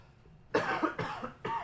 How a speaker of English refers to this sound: I'm gonna cough really loud. Give me 1 second.